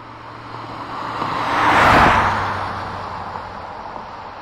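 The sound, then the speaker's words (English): A car, recorded with a straight-on stereo microphone, approaches quickly, whooshes past the front around the midpoint, then quickly moves away, the rushing noise swelling and fading with a steady low hum beneath. “classic car buy”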